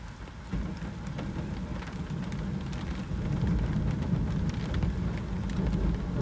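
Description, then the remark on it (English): Steady, heavy rain hisses without a break, with a deep low rumble of thunder swelling underneath partway through during the storm. No one speaks. “Or, dude, you guys can chill with me, dude, because you're going to hear a bunch of thunder, probably.”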